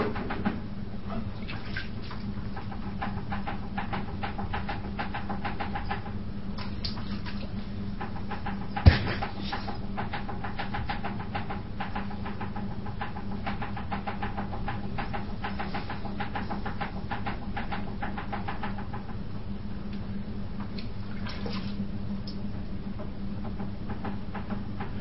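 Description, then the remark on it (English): A potter's wheel whirs steadily while wet clay is shaped, with soft rubbing and squishing textures throughout and one sharp click partway through. No one speaks. “It is impossible for that clay to become what that potter intends if there's no connection between the clay and the potter.”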